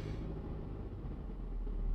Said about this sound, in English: I'm in the car, if you can't quite fucking tell. So I'm not going to mess with my phone too much.